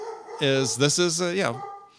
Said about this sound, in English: Sorry, dog barking in the background.